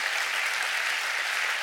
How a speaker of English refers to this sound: I want to honor Black History Month today. Let's give that an honor. Come on, clap your hands.